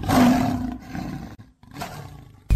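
A lion roars loudly, a deep rumbling bellow that fades, pauses briefly, then swells into a second roar, with a third burst starting just as it ends.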